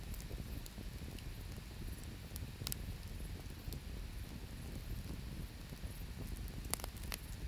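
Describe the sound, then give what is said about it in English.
A fire crackles steadily, with sharp scattered pops and snaps over a low, continuous rumbling hiss; no one speaks. “And when you hear the crackling of the fire, and she pauses just to, so he can listen to the fire next to them.”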